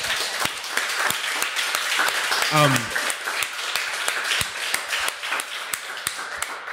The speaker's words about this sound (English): Big round of applause.